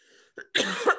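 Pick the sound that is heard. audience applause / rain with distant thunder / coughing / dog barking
coughing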